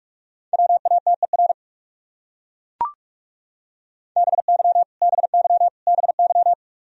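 Rapid Morse code at 45 words per minute, spelling common English words in a steady mid-pitched tone: a quick burst of dots and dashes, a sharp click, a pause, then three more fast groups of beeping characters. No voices.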